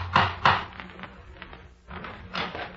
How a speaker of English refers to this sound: The day when Madame Guibert knocked at his door.